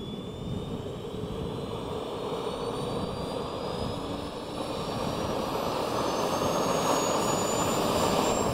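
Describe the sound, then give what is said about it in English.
Multiple engines of an unmanned multi-engine research aircraft roar steadily with the brakes held on, a high whine slowly climbing in pitch over the dense rumble and growing slightly louder partway through; no voices. “The unique thing about being a pilot of an airplane like Terra is that it's multi-engine.”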